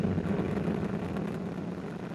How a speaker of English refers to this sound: And we have engine start.